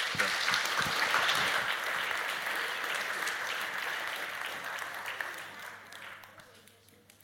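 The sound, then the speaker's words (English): An audience applauds a group of kids with dense, steady clapping that holds strong for several seconds, then gradually thins and fades out toward the end. “Why don't we give our kids a clap?”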